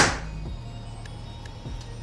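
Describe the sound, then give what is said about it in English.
A compound bow fires a 450-grain arrow, measured at 286 feet per second: a sharp, loud thump with a brief twang that quickly fades, leaving a steady low hum and a few faint ticks. “Now for our 450 grain arrow.”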